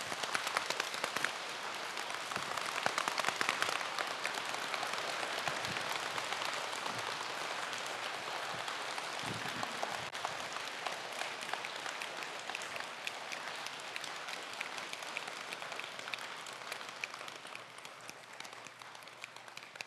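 A dense, steady patter like heavy rain pouring down, made by many hands clapping together to imitate a storm, holding loud and even for twenty seconds before easing slightly, with no talking.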